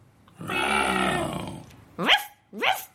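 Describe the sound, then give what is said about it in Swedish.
A voice imitates a growling roar, one long rumbling growl followed by two short rising barks, fairly loud with no other talk. “Hör jag ett sälnos ryt?”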